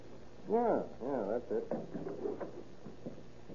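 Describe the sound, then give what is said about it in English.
An old skeleton key scrapes and turns in a door lock, with a short run of metallic clicks and rattles as the mechanism works loose. “Let's see if we can get this door open.”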